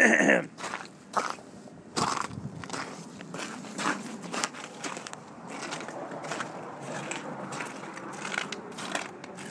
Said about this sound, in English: Here's the snow. Here's the snow. Listen to that crunch.